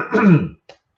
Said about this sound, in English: Anyway, so it is, I'm just going to have a cough, sorry.